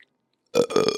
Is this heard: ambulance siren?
no